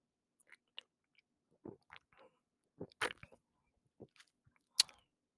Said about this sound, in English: She takes a sip of her beer.